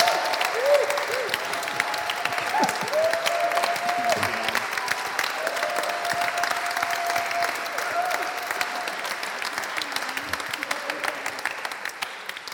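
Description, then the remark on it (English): A crowd applauds steadily for several seconds for a team that is ending, a dense, even patter of many hands clapping, with faint voices and a few whoops mixed into the ovation. “So yeah, maybe just have a big clap for the team that is now ending.”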